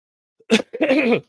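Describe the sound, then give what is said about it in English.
A short, sharp cough from someone with a cough and stuffy nose, followed by a longer, throaty, voiced cough that rasps for about half a second. Both are fairly loud, with silence around them and no talking. “I have been up snowboarding for the last couple days, cleared my mind, but I got a little bit of a cough and a little bit of a stuffy nose, but that's okay.”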